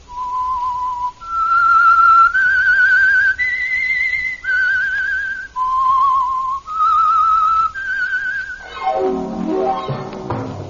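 A clear whistled melody of about nine sustained notes with light vibrato, stepping up and then back down, before a swell of orchestral music takes over at the end; the opening whistle of the Meisterbrau radio mystery drama The Whistler.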